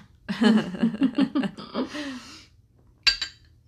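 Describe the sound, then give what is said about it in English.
A person clears their throat with a string of rough, voiced rumbles lasting about two seconds, then after a brief pause comes a short, sharp sound of a sip of water or a glass touching down. “A little drink of water and clear my throat.”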